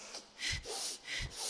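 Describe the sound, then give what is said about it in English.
Two harsh, breathy coughs about a second apart, fairly loud, each a sharp burst trailing into a rasping exhale, with no talking. “Coughing. Oh my God. Hold on.”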